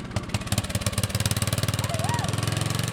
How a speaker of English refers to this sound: Welded some bumpers onto it, put a leg cage onto it. Oh, that seems solid. Nobody's going to hurt you. No, but when a mower hits it, it's a little bit louder. And how fast will it go? It only goes about like 5 miles an hour, so it ain't very fast.